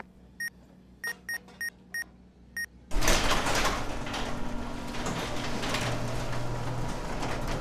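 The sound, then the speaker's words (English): A quick series of six short electronic beeps, then a loud hissing whoosh as the powered sliding door of a Flat Rock warehouse opens, its mechanical rumble carrying on steadily for several seconds. “Well, the door works.”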